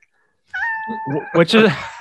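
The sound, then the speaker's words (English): A cat lets out a drawn-out meow, followed by a few shorter, rougher cries, with people talking quietly in the background. “So, you know, see, your cat wants to go in on it.”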